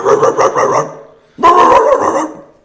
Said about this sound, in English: And then I wake up and this dog that we found, she's just in the garage barking.